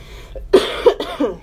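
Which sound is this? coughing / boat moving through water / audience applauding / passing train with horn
coughing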